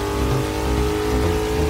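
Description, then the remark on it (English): A car engine roars and revs hard as it accelerates, a loud, steady growl with strong low rumble and rising harmonic whine, no voices. “The thrill of rapid acceleration and a revved up engine working together to go fast.”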